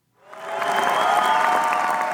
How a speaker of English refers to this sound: a young Ukrainian girl stands up in a safe room full of families and belts out the lyric solo. Applause broke out as soon as she finished.